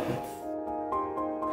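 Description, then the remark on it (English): A sustained inhale by a patient through a cannabis vaporizer during a treatment in a hospital clinic, with a faint whistling, buzzy tone and soft rhythmic pulses running through it for a moment or two, with no talking. “this is the vaporizer. We start now.”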